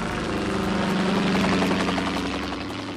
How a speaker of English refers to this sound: I'm on the radio with a bunch of cheesy sound effects. In fact, here comes one now. A virtual helicopter virtually overhead.